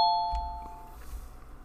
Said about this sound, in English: I really should mute these notifications while I'm recording, huh?